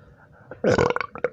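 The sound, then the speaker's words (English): A loud burp erupts suddenly and rumbles for about half a second, followed by a couple of shorter gurgling bursts trailing off. “You burp.”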